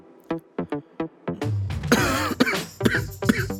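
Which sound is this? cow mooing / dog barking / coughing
coughing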